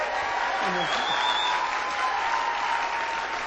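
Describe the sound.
A room full of people applauding, a steady, dense patter of many hands clapping at once, fairly loud and sustained throughout with a faint voice briefly audible beneath it.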